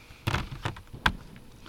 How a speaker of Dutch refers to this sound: Ja, we horen hier allemaal knallen hier. Ik denk dat ze ergens vuurwerk aan het afsteken zijn, maar ik weet niet waarom. Volgens mij zijn de Duitsers op de camping weer bezig met een hele van een offeringsfeest.